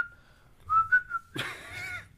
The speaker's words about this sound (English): That's the one. That's professional whistling. There you go. Professional whistling.